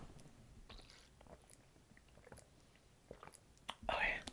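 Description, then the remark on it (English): Someone drinking water: soft wet mouth clicks and small sips, then a louder gulp and breathy swallow toward the end. No talking. “Let me drink some water because it's kind of a long story, but it's kind of not.”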